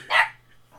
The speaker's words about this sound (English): Are they okay? You heard that? They barked. Oh, babies. They were barking because we're not talking about the movie. That's what it was.